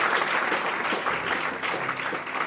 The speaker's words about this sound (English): So let's just give these ministers a round of applause. We love and appreciate them.